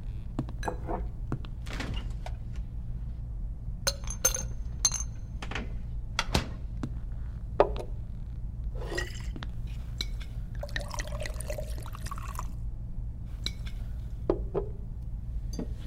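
Glasses clink in several sharp taps, followed by a short burst of a drink being poured into a glass, all over a low steady hum with no one speaking.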